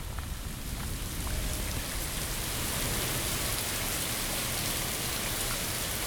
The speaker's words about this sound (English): The rain's getting heavier.